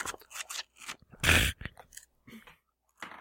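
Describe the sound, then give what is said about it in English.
A pair of six-sided dice rattle and clatter across a surface, with scattered sharp clicks around one louder, rough tumbling burst, alone with no talking. “I'm roll 2d6s.”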